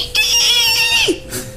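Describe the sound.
A person's voice imitates the battle shriek of Merle the Squirrel, a game character: one loud, strained, high-pitched cry held for about a second, then dropping sharply in pitch at the end, with no other sounds.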